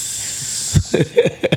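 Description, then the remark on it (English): A steady fizzing hiss of a carbonated drink held up to the microphone fills the first moment, then fades into a few short, lower bubbling pops spaced unevenly. “Get the fizz up in the mic.”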